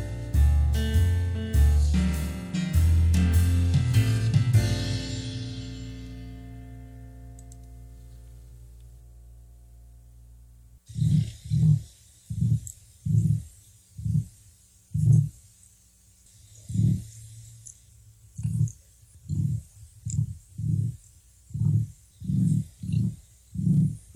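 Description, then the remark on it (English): A short musical passage fades out, then an emu gives a run of about sixteen deep, booming rumbles, low thudding pulses repeating in a steady, slightly uneven rhythm with no talk over them. “Well, those are the sounds of a flightless bird called an emu. I mean, those deep rumbling sounds, that's a bird.”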